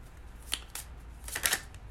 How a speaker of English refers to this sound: But I am going to shuffle these and pull one card for the energy of today and actually what we're focusing on.